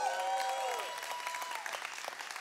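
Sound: audience clapping and cheering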